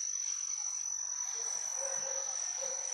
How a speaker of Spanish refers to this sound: No, hay un zumbido. Como una chicharra, pero... como un grillo, pero más largo. Ah, como un grillo, sí. Sí, no sé qué bicho, porque la chicharra es como que canta, ¿no?